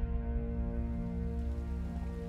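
Steady rain patters down at Ludlow Castle without pause, a soft continuous wash of drops blended with a low, even hum beneath it. No voices are heard.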